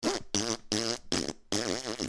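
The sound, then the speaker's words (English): A voice makes a string of five buzzing, wobbly fart noises with the mouth, each burst loud, with brief gaps between them and the last one drawn out longest. “How do you go from the vocabulary you have to fart onomatopoeias?”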